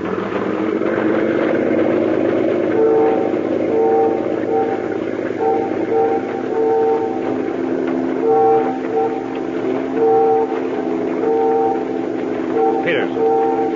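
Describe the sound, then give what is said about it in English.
A ferry whistle sounds a series of short and long blasts in Morse code, signaling a boat on a river, steady and fairly loud over the continuous low drone of an idling engine. “Ferry whistles. They're signaling us.”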